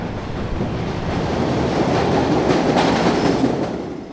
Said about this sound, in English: Okay, I can feel the wind coming through, so I guess that is. Here comes the train. Here comes. Yeah. Okay, I'm going to step back.